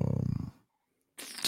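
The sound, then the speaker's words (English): A large Bully pit bull dog gives a low, rumbling growl, then after a brief silence lets out a short, harsh, breathy bark; no one speaks. “I heard some barking.”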